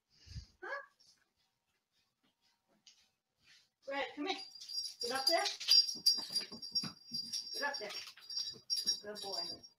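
A dog whines briefly, then after a pause breaks into several seconds of excited yelps and whimpers, with a faint metallic jingle running through the noisy stretch.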